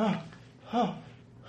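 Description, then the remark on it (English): A person pants heavily in character, two breathy, voiced huffs about a second apart, moderately loud, with a faint hiss of breath between them and no words spoken. “I'm gonna just be panting.”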